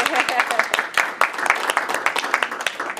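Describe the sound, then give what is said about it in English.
A crowd at a meeting breaks into applause for three newly elected three-year term candidates, many hands clapping in a dense, steady patter with sharper individual claps popping through, sustained at a fairly loud level for a few seconds. “Yeah, we should clap.”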